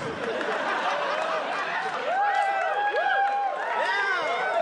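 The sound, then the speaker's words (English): A large audience cheers wildly for several seconds, a dense, loud wash of overlapping voices with rising and falling whoops and shouts swelling in the second half. “See, the crowd has gone wild.”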